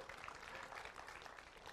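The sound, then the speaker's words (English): A crowd claps steadily for a man who greets people out front, a dense, even patter of many hands for a couple of seconds, with no voices standing out. “He always gets a hand clap.”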